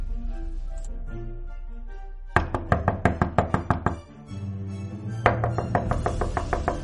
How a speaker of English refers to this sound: Hashem Yishmor, who can be knocking so late in the evening?